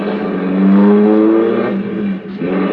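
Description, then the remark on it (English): A car engine revs up loudly, its pitch rising as the vehicle pulls away and accelerates, a steady rumble with no voices. “Then we drove on.”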